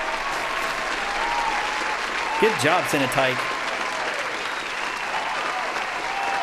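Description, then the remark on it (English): A steady, dense applause sound effect for the winner of a guessing game, many hands clapping continuously from start to finish, while a voice briefly speaks over it in the middle. “Here's a round of applause for Cenotype.”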